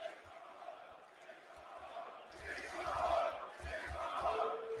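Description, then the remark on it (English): A large wrestling arena crowd in the UK roars and cheers, a steady wash of voices that swells louder halfway through, with low thumps of stomping or banging beneath the din. “It's just the crowd's so good here too. I mean, it's a UK crowd.”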